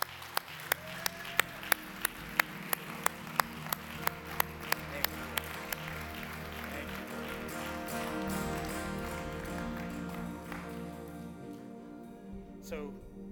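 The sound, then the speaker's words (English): A crowd claps hands as praise to God in a steady, even rhythm of sharp, loud claps for several seconds, then breaks into a sustained wash of scattered applause and cheering that gradually fades out. “Would you give God a hand clap of praise today?”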